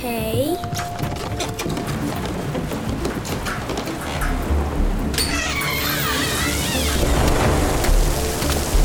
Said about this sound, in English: Oh man, is it raining?